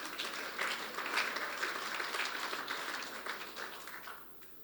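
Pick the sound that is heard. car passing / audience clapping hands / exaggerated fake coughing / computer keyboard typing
audience clapping hands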